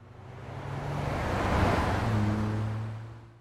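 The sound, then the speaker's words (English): A car rushes past, nearly hitting a running pedestrian, its engine and tire roar swelling to a loud peak, then fading as it moves away. There are no voices. “I ran for a long time and didn't stop until a car almost hit me.”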